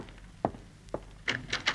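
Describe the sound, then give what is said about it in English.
A front door is opened to answer somebody at the door: two dull wooden thunks, then a quick burst of squeaky, rattling latch and hinge noises. Nobody speaks. “No, there's somebody at the door. I'll get it.”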